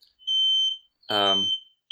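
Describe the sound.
A smoke alarm in an apartment, thought to be set off by an oven heating up, sounds in loud, shrill, high-pitched beeps, a long tone followed by another after a pause, with a brief burst of a voice in between.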